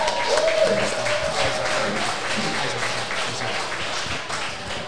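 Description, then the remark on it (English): A crowd breaks into sustained applause for Tim Manor, dense rapid clapping holding steady and fairly loud for the whole stretch, with faint voices and a brief tonal whistle mixed in underneath. “How about a round of applause for Tim Manor?”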